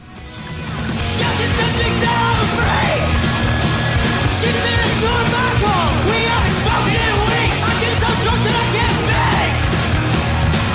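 A loud, dense punk rock song kicks in after a brief quiet start, with driving distorted guitars, pounding drums and shouted vocals sustained at full volume throughout.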